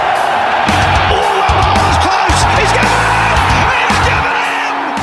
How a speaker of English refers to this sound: Crowd cheers.